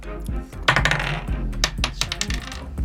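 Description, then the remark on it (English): Several dice clatter and tumble across a hard tabletop, a quick flurry of sharp clicks and knocks that bounce and settle over a few seconds, with no voices. Players are rolling stealth checks in a tabletop role-playing game. “Fuck these dice.”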